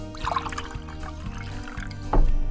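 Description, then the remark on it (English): Water pouring into a glass, a steady trickle with a brighter splash near the end, over a low steady hum. “Now, if I were to lower the temperature, what's in this glass, the 32 degrees Fahrenheit, 0 Celsius, you would get solid H2O.”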